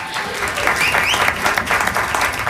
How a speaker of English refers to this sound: This is about 2/3 of the cast right now. We also have. Clap it up. Yeah. Yeah, that's good.